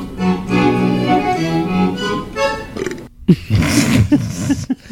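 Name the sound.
burp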